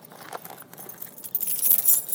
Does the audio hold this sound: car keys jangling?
yes